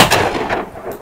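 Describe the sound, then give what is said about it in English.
A loud gunshot from a gun being fired again after it was reassembled cracks out, followed by a rolling, rumbling echo that lingers and fades over about a second, with a faint second report near the end. “He reassembles the gun, and then he fires again.”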